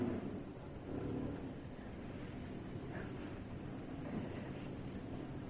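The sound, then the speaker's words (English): A car passing outside produces a steady, muffled whooshing rumble that fills the whole stretch. It stays fairly even in loudness, with no clear rise or fade, and there is no talking. “I'll wait till the car is gone.”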